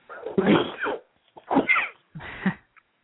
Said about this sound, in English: Bless you. Excuse me.